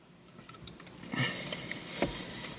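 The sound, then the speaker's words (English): Wet chewing of a chewy gummy straw candy: soft squishy smacks and sticky mouth noises repeating irregularly, growing louder partway through, with no talking. “He's munching down on that.”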